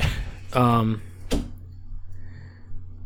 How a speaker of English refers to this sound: Hold on. Shut that door. Sorry.